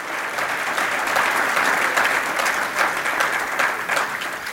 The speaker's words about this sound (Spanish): Vamos a tratar. Ahora, denle un aplauso a Cristo.